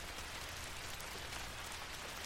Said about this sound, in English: It was a rainy day, but it was still summer and the raindrops were lukewarm.